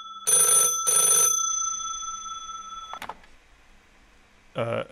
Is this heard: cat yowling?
no